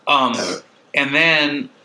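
burp

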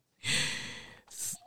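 a sharp gasp

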